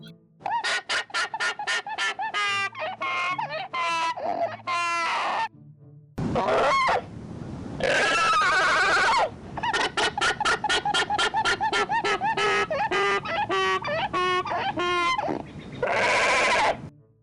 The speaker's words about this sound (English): So alpacas have alarm calls, which is a sort of a donkey-like hee-haw, but higher-pitched and less rusty-sounding. It kind of sounds like a combination. It sounds like a donkey who swallowed a squeaker from a squeaky toy.